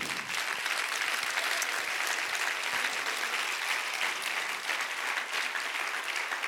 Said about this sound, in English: Can you clap those hands a little bit louder? You know, the Bible says, clap your hands, all ye people, and shout unto God with the voice of triumph. Come on, that clapping's going to wake somebody up near you right now.